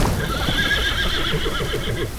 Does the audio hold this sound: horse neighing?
yes